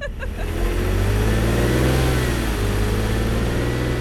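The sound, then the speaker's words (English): A car engine revs up loudly and steadily as the vehicle pulls away, a deep continuous rumble whose pitch rises and shifts over a few seconds, with no voices. “But the car just pulled away, leaving me in the dark again.”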